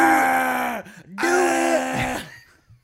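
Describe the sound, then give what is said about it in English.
A voice imitates a wailing purge siren with two long, loud, sustained vocal wails separated by a brief gap, each held at a steady pitch before trailing off into a low grunt. “It would be Alex Jones just screaming into the microphone in the form of a purge siren.”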